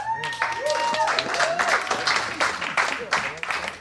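A crowd bursts into loud, sustained applause, dense clapping with scattered whoops and cheers rising over it, close and energetic throughout.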